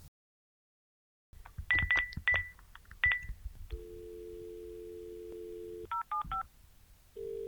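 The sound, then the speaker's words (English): A quick run of telephone keypad tones, five or six short beeps, dialing the Shangri-La Colony Information and Helpline, followed by a steady dial tone, then a few more rapid key tones and a brief tone at the end. “But first, it's time to tap the phones at everyone's favorite third-tier pirate radio station, Radio Free Shangri-La.”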